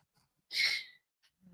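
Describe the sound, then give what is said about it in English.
A single breathy yawn from a person stretching in a recliner bursts out for about half a second, airy and hissing, then fades into near silence with a couple of faint rustles. “Every time I yawn and stretch, I wind up sliding down in this goddamn recliner.”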